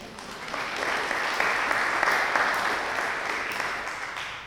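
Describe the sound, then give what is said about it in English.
A church audience at a vigil mass claps for themselves together, a dense, steady wash of many hands that swells over the first second, holds strong, then gradually tapers off near the end. “Please clap for yourselves.”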